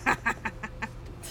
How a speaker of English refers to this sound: We are sitting outside. It's an actual vibe right now. There are birds singing.